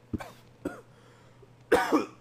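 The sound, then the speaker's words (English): Three harsh coughs from one person with a recurring cough: two short barks about half a second apart, then a longer, louder rasping cough after a pause, with a faint steady hum underneath. “I got a cough again, I think.”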